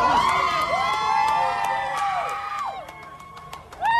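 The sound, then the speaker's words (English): A crowd of supporters outside a courthouse cheers loudly as a man walks out after a court decision, with overlapping high-pitched shouts and whoops, sustained yells that dip and rise, and scattered sharp claps or clicks cutting through the noise. “They had gathered to witness this decision, and as he walked out, he was greeted with cheers from some of his fans, if you can call it that, or supporters.”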